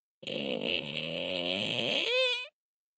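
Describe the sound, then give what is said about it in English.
A voice imitates a creaking door with one continuous, raspy, wavering groan about two seconds long. It ends in a higher, wobbling squeak. No other sounds are present. “Can you make the sound of a creaking door?”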